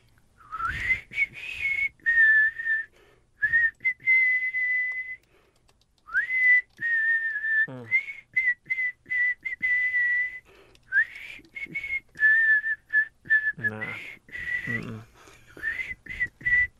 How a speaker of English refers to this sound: I'm going to try and whistle. I can't really whistle well, but it is one of the bands or artists from Night 2, and you need to come up with the artist and the song title.